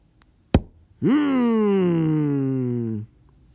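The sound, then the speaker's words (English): A single sharp, loud knock on a door rings out, then a long, low, drawn-out zombie-like vocal groan follows for about two seconds before stopping abruptly. “I'm gonna answer the door and hope you're the pizza guy.”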